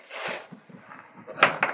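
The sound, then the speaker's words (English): Dice, including a d30, rattle and clatter across a hard tabletop in a short burst of sharp clicks, with a brief softer shuffle before and faint murmured voices underneath. “Can I roll my d30 so I can find that?”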